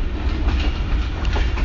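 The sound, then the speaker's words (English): A train leaving the station in Multan, Pakistan, bound for Rawalpindi, rumbles along steadily. Its heavy low-end drone is layered with faint rhythmic clacks of wheels on the rails, loud as if heard from aboard, with no voices. “The train is now leaving.”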